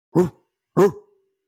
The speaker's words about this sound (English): As she's walking back to the truck, you all hear barking in the woods.